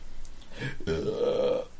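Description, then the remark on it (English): A single long, low burp rumbles for about a second, loud, rising into a tonal, croaking drawl before trailing off. “This is a burp.”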